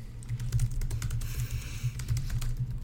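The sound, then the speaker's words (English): Rapid, continuous clattering of computer keys, a dense stream of quick clicks typed at high speed over a low steady hum, with no one speaking. “Furious typing going on here in the.”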